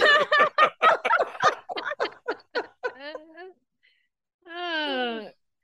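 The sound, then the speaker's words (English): A woman imitates a raven's caw: a burst of rapid, throaty gurgling calls, then a short pause and one drawn-out, nasal caw, fairly loud. “Cawed like Matthew's the raven.”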